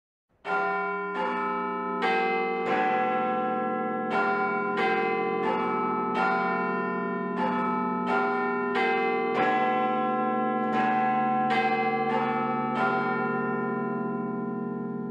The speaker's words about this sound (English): today's tune we're using is the very famous tune actually played by Big Ben, the iconic... The Bells of Westminster